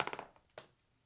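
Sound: dice rolling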